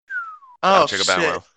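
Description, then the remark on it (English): A single mouth whistle slides smoothly downward in pitch like a slide whistle, lasting about half a second, followed immediately by a loud burst of voiced talking or laughter. “I thought somebody actually played a slide whistle on my podcast”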